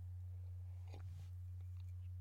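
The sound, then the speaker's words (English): A short, quiet slurp of someone sipping coffee, heard once over a steady low electrical hum, with no talking. “As I get a sip of coffee here.”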